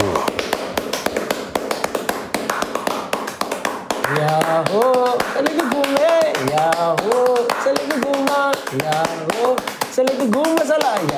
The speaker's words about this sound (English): But I have to tell you, from what we saw, Salegi Guma was less about messages and more about rhythm, especially when it comes time for the audience to join in with the rhythmic clapping known as Rombo.